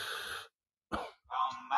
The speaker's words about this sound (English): Wait there, I've got to cough first. Bloody hell. Where did that come from?